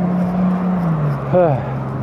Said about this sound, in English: So, yeah, kind of got some traffic going past me right now, so that's gonna make a little bit of distortion, but that's all right.